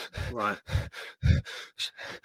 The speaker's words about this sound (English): And again, if we're hyperventilating, so for a lot of people that feel anxiety or feel stressed or feel worried, they start to breathe quickly. Generally, it'll be through the mouth, and generally it'll be breathing into the upper chest.